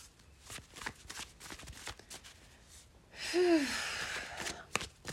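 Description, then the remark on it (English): A deck of tarot cards is shuffled, with quick papery flicks and soft taps in an uneven rhythm, then a long breathy exhale that rises over the last couple of seconds. “Shuffling the tried and true on this channel, we have the Taramucha.”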